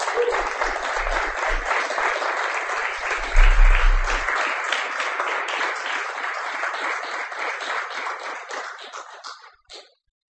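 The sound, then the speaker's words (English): A crowd breaks into sustained applause to clap a poet to the stage, dense and steady for about nine seconds, with a brief low thump partway through, before the clapping tapers off and stops. “Please clap the poet to the stage.”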